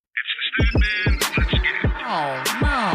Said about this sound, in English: That buzz you hear is electrification taking over motorsport. The NHRA just announced a sportsman class for electric vehicles.